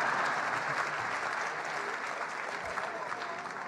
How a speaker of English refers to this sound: And please hold your applause until the very end. New York State Lieutenant Governor Kathy Hochul. President and CEO of Empire State Development, Howard Zemsky. Okay, applaud then. Go on.